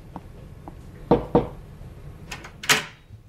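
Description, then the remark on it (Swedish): Two quick, solid knocks on a doctor's door, followed by a brief clatter like a handle or latch moving. No one speaks. “Knacka på hans dörr igen och fråga.”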